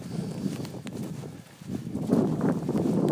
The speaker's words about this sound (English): Ooh, it's getting windy. The wind is picking up.